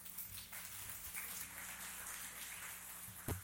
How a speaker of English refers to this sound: Glad you're applauding now. You may not want to when I'm finished.